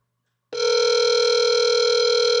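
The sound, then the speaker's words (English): After half a second of silence, a loud, steady electronic telephone tone from a phone starts and holds unbroken to the end before a voicemail greeting, with no voices. “Play this little clip from his phone.”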